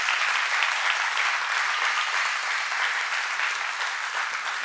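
Sustained applause from a church audience, a dense steady wash of many hands clapping at an even loudness for several seconds, with no talking over it.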